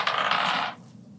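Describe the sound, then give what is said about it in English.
Dice clatter and roll across a hard tabletop in one short, bright rattling burst, fairly loud, before stopping abruptly into near silence; the dice are rolled for an intelligence check in a game. “I'm busting out the friendship dice to save friendship.”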